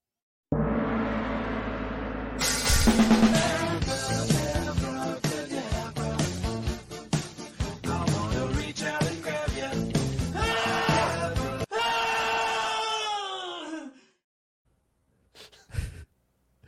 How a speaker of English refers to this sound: We have to play the jingle, as we always do. And for those of you that weren't around last week, there's a new version. So we're going to play that version for you.